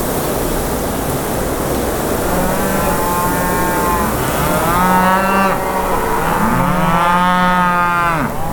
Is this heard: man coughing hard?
no